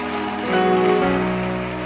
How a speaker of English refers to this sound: You can do a better hand clap for the Lord.